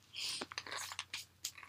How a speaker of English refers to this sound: And technically, this isn't even breakfast. I'm just, like, munching on a snack.